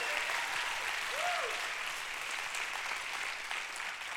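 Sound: audience hand clapping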